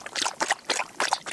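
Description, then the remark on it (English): Water being poured or drunk, heard as four quick splashy, gurgling bursts in an uneven rhythm, with no talking over it. “I need some water. I need something to drink. Here, drink this.”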